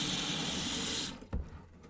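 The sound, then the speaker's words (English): Water runs steadily from a tap into a container for about a second on a hot day, then shuts off, followed by a couple of brief clunks and handling noises. “Maybe I'll fill some water.”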